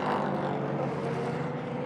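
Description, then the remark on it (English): The engine of the number 24 racing car roars loudly as it crosses the line at a race circuit and heads down towards turn one, a dense, steady snarl of revs that holds for a couple of seconds with no voices over it. “Here comes the 24 Farfus across the line, underneath my feet, down towards turn one.”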